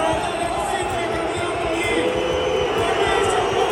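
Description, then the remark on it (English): A dense, steady roar of a large crowd of fans at a basketball game, chanting and clapping throughout, loud and continuous with no clear pauses. “The fans were just chanting, singing, dancing, clapping, and of course, booing when things didn't go their way.”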